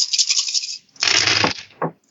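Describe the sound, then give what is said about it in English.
A handful of ten-sided dice (D10s) rattles, then spills and clatters loudly across a hard surface, ending with one last short knock. Bright, with no voices. “That's a D10, okay. That's a 10 dice.”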